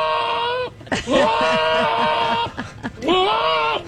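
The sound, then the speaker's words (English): A goat bleats loudly, three long wavering cries in a row, the middle one stretched out and quavering, with brief pauses between them, played as a sound effect. “We got to play goat sound effects.”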